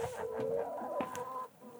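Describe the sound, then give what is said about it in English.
Chickens kept by a chicken farmer cluck and squawk in a short, busy burst, several birds calling over one another in quick, uneven bursts with no talking. “And here I am, chicken farmer.”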